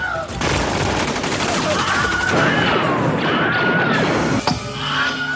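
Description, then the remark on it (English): The Wilhelm scream stock sound effect: a short, high scream cries out amid a dense, loud barrage of gunfire, crashes and battle noise, with faint shouting voices mixed into the chaos. “I think it's called the Wilhelm Scream, and it's... I'm going to play it right here.”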